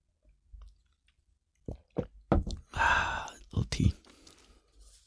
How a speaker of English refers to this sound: Tea. I had to sip a little tea.